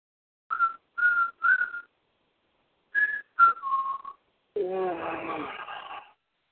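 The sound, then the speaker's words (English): A few short whistled notes come first, then a long, drawn-out voiced yawn that rises and falls in pitch, clear with no talking. “Who's yawning already?”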